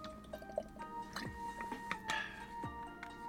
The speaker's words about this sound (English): Let me drink water real quick.